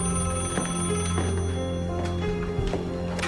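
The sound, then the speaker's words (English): A telephone rings loudly and continuously, a dense metallic bell-like trill sustained without pause, with no voices, as a call comes in from a police station. “When I answered the phone, I instantly knew that something was wrong with his voice.”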